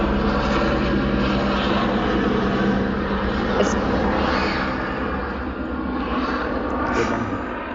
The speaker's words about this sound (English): Oh, here goes a plane. This is why it's good. I'm going to let this thing pass. I know. A helicopter. Going very slowly.